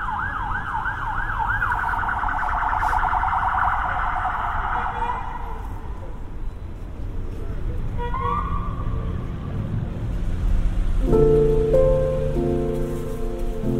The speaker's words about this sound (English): So yeah, coming back towards Brixton Station again now. Police cars and ambulances and buses and constant.